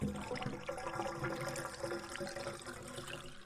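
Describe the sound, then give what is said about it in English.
A wet, bubbling gurgle runs steadily for a few seconds, like water struggling down a partially clogged drain, thick and churning with a slightly hollow, throaty tone and no voices. “A gurgling sound, like a partially clogged drain, reaches his ear.”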